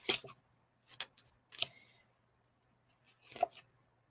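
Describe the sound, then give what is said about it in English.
Tarot cards being shuffled, heard as four or five short, crisp papery bursts spaced irregularly over a few seconds, fairly quiet with near silence between them and no talking. “I don't think I shuffled this very well. But the cards don't lie.”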